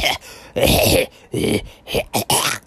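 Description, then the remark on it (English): A loud, irregular run of harsh coughs and throat-clearing noises after eating, about five rough bursts with short gaps between them, and no talking. “After I eat, I tend to cough a lot.”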